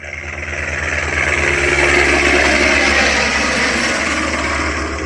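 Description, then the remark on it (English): A helicopter flyby sound effect played from an online sound effects site: a loud, continuous rotor and engine roar with a steady low throb, swelling in over the first seconds and easing slightly at the end, with no voices. “Helicopter flyby.”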